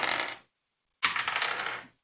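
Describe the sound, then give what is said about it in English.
Dice rattle and clatter across a hard surface in two bursts, rolled for perception checks in a game: a short roll, a pause, then a longer tumbling roll that gradually dies down. No voices. “And well, roll me perception checks, everyone.”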